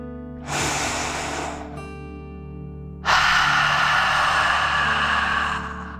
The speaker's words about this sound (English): Now let's take one more deep dragon breath together. Remember to breathe in through your nose, filling up your lungs, and breathe out through your mouth, pretending you are breathing fire. Ready? Take a deep breath in and out.